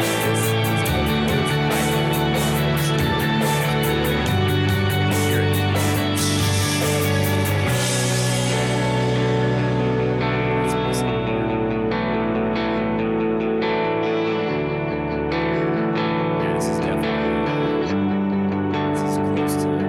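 A rough band demo recording plays loud and continuous, with dense distorted guitars, steady drums and washes of echo; the bright cymbal-heavy top end drops away partway through as the arrangement shifts.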